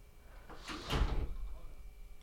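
A gate swings open with a scraping, rattling sweep, then bangs shut with a sharp clack at the end, heard at a moderate distance.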